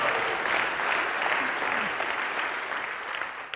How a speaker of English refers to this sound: Yeah, I mean, if one person claps, everybody's got to clap. That's a rule. We're giving God praise.